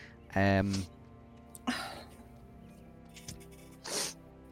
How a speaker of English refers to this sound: Yeah, that's me from the sudden jolt. I'm coughing.